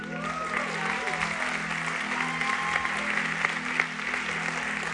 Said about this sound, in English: They just clapping for you, man. It's all right.